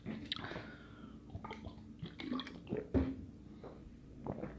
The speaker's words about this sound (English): Sorry. Sorry about that. Just drinking some water.